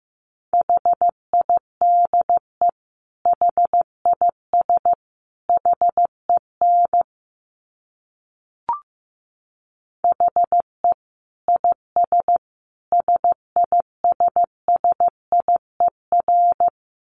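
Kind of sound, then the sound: signal or alarm, morse code tones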